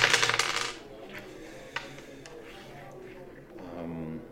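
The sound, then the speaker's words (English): A quick burst of six-sided dice clattering and rattling across a hard tabletop, loud, settling within a second, followed by quiet talking in the background. “So yep, going to double the dice here.”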